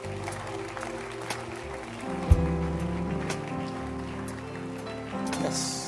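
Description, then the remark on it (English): A church audience claps their hands for people coming to the front to volunteer to serve, in a steady, dense wash of applause lasting several seconds, with sustained musical tones humming underneath and a faint voice now and then. “Oh, clap your hands for them.”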